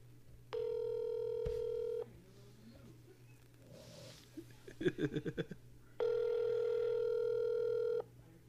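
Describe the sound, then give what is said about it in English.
Two long, steady telephone ring tones, each about a second and a half, with a quick run of keypad dialing beeps between them, from calling a California number found online as Tom Brady's phone number, all heard clearly over a faint low hum. “Call it? That phone three-way.”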